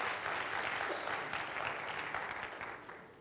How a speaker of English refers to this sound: Radio listeners, there was a little applause there. It was weak, but it was there, radio listeners.